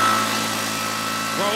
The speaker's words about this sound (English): It's gassed up. I'm turning on the leaf blower. I'm going to dry my hair.